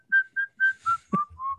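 Someone whistles a short tune, a Japanese children's song, of about six clear, sustained notes in a bright, high register, the melody stepping downward toward the end, with no talking.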